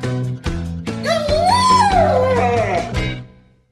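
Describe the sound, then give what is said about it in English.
A dog gives a few short, sharp barks and then a long, wavering whimper that rises and falls in pitch. It's fairly loud, then fades out at the end, with no talking. “Guide dog.”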